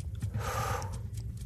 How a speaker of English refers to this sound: Listen to that ticking clock. For it is the sound of your doom.